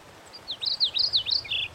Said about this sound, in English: We're not the only ones out here. There's a mourning warbler just outside our tent.